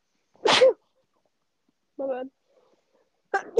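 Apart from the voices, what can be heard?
repeated sneezing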